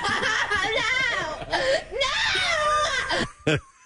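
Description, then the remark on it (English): A woman sobs and wails in long, high, quavering cries that rise and fall, with shaky gasping breaths between bursts, ending in a short sharp sob before falling quiet. The crying is from the TV show Wife Swap and is over a dog being left outside for about an hour. “That's over a dog being kept outside, by the way.”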